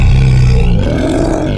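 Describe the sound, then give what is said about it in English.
A voice imitates a bear's roar, a loud, sustained, rough growl lasting under two seconds, with rumbling low tones that wobble and fade slightly toward the end. “Bear gnarls and he snarls. Bear roars and he rumbles.”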